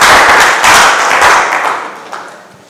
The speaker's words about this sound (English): Clap your hands together for the Lord as you take your seat.